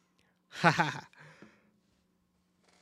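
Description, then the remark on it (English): A single stifled cough merges with a yawn in one brief, breathy burst, then trails off into a softer exhale. Nobody speaks. “I was about to sneeze, cough, and yawn at the same time. Ended up doing two of them.”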